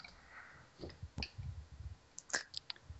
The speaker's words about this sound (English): Whoever's clicking their pen, please stop.